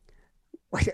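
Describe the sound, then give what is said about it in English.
A single sharp, explosive sneeze, loud and breathy, following a quick catch of breath and a faint murmur at the start. “Bless you.”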